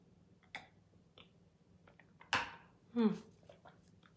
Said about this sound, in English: Take a sip of my coffee, actually.